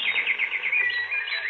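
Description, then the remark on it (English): Small birds chirp and twitter continuously in a bright, high-pitched chorus, with rapid overlapping calls at a steady level and no voices. “The little birds were frightened, but when she was dead, they began to sing again.”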